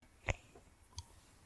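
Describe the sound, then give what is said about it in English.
Two crisp camera shutter clicks sound about a second apart, the first sharper and louder, the second softer with a faint metallic ring, over a quiet background with no voices. “Ragdoll 2021, Episode 1, suspenseful music playing, camera shutter clicking, reporters for clamoring.”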